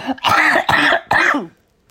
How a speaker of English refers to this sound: I am genuinely ill this week. I've been coughing up all manner of colours. Honestly, it's like a rainbow.